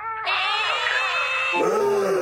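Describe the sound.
A person's voice lets out a loud, screeching Godzilla-style roar, held for about two seconds and sliding into a lower, rougher growl at the end.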